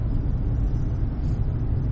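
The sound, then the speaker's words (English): A deep, steady rumble of thunder from an approaching storm rolls on for a couple of seconds, low-pitched and fairly loud, with no voices over it. “Oh, boy, there's a storm approaching.”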